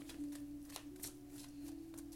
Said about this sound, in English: I am shuffling the Modern Witches tarot, and let's get started.